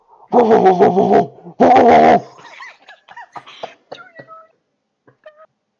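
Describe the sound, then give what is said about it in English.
A person imitates a cat with two loud, drawn-out meows in quick succession, followed by a few softer, scattered squeaky chirps that fade out. “I can meow.”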